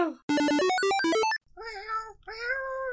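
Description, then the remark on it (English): A quick, bright electronic jingle of stepped notes plays, then cuts to two drawn-out cat meows, fairly loud, with a faint low rumble underneath. “Order, order, meow, meow. Council of Pets!”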